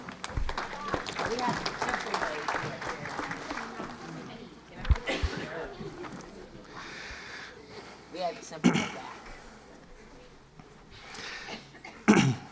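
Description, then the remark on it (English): Audience applause rises at once, a dense wash of many hands clapping for several seconds before thinning out into scattered claps, murmurs and a few sharp coughs or thumps. “All right, round of applause.”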